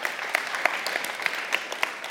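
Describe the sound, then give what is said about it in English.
An audience claps steadily, a dense wash of many hands with sharp individual claps popping out at irregular moments. No voices break through the applause. “Absolutely, that's totally worth clapping for.”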